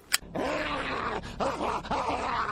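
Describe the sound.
A man's voice growls and snarls like a dog in a continuous, rough stream, rising into a few strained, bark-like yelps, in a clip featured on the TV program A Current Affair. It's loud, after a brief click at the start.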